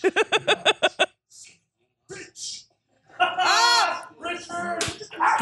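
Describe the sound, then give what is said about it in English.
A dog lets out a quick run of about seven sharp, rapid barks, fairly loud, then falls quiet as people start talking and laughing. “sorry, my dog.”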